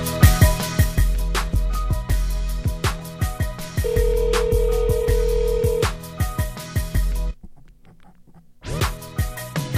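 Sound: telephone call ringing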